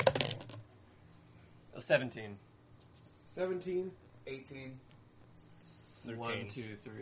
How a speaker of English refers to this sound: just throws his goddamn dice.